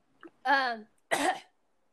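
A woman coughs twice, first a voiced, throaty hack and then a harsher, breathy burst a moment later, with a brief quiet gap between them and no talking.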